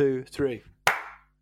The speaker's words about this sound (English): Can we do a high five? I'll clap at the same time as you. You ready?